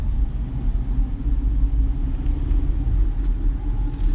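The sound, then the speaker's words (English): A steady, deep rumble of a car moving along the road in traffic, the engine and tire noise droning continuously at an even loudness with no voices. “Mainly because I'm seeing traffic right now, and doing stuff like this keeps me awake, keeps me alert.”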